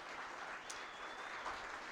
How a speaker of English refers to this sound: First of all, I want to give a big round of applause to the team from the Buffalo Rose. They've done a great job again getting us set up.